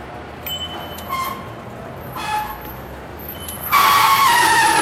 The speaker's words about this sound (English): Oh, them brakes aren't great. Okay, well, in 10 minutes, I've just cycled from Place Bellecour in the centre of Lyon to this tiny little alleyway behind the Place de Terreau.